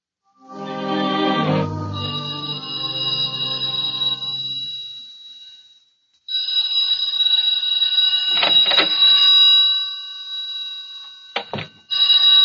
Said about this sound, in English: I've just gotten back to the office. The phone was ringing when I came in the door.